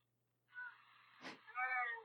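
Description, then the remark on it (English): A cat named Mia meows twice at the door in drawn-out, plaintive cries, fairly faint over a steady low hum, with a short sharp burst of noise between the two calls. “I'm sorry, my phone just rang because my cat's at the door.”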